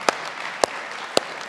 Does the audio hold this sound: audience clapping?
yes